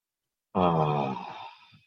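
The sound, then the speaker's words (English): One deep breath out, released as a long voiced sigh that trails off into breathy air. Fairly loud, and alone after a moment of silence. “Beautiful breath. Wonderful breathing, being alive.”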